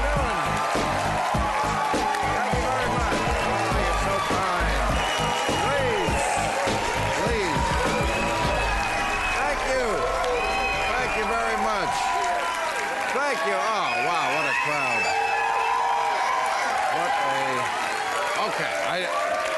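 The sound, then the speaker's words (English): A studio audience at the HBO late-night show Real Time with Bill Maher cheers and applauds loudly and continuously, a dense wall of clapping mixed with whoops and shouting voices that holds steady for about twenty seconds. “I think I know why this crowd is happy.”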